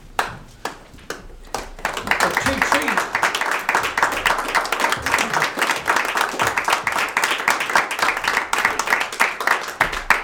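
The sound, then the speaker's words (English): In a church, a few scattered claps open, then the standing audience joins in with loud, dense, sustained applause for several seconds. “Let's stand and give him a good hand clap.”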